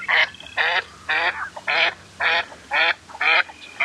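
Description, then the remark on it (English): A female northern pintail duck gives flight quacks eight times in a steady, evenly spaced series, each call short, raspy and nasal, clear against faint background noise. “Speaking of the mallard hen call, we have also in this app here the female flight quacks.”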